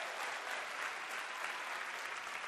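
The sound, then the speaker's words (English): A church audience applauds steadily, many hands clapping at once in a dense, continuous wash of sound that holds at an even level throughout, with no voices standing out, giving the Lord a hand clap. “If you believe that, give the Lord a hand clap if you would.”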